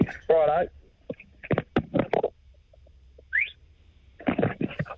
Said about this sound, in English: Short and sharp. Left me wanting more, is what I thought. A whistle's a hard thing to come, to hear through a phone line, I think.